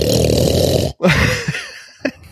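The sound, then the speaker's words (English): A voice imitates Daddy Pig from Peppa Pig doing a deep pig snort: a long, rough, rattling low snort, a brief break, then a shorter gravelly snort trailing off with a small sharp grunt near the end. “Brother George, and does the most powerful, most baritone snort.”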